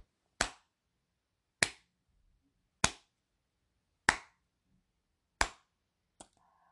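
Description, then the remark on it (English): Five sharp, loud hand claps at a slow, steady pace, each about a second apart, with silence between them and no voices, followed by a fainter final click. “I'm slow clapping.”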